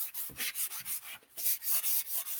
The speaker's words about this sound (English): And you got to think about, you know, people always think about sanding as creating a whole bunch of dust and going crazy and, you know, digging through layers. And really all we're doing is smoothing out the layer of primer